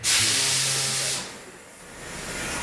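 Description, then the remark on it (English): A loud, steady hiss of high-pressure water spraying from a water jet cutter, with a faint low tone beneath, lasting about a second before dropping to a quieter background rush. “So this machine is called a water jet.”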